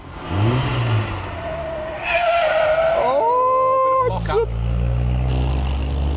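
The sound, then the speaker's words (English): An old Austin Healey car with straight-cut gears and drum brakes revs hard as it passes by, a whining pitch climbing through the gears before dropping into a low, steady rumble. Faint voices sit underneath. “drum brakes. You'd have to lock them up trying to turn into there on that, wouldn't you?”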